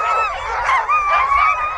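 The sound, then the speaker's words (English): A frenzied chorus of sled dogs barking and yelping together at the mass start of a 14-team sled dog race on frozen Charles Family Lake, a dense, steady wall of overlapping high-pitched cries with no break and no voices. “The barking decrescendos as the last team departs towards the horizon.”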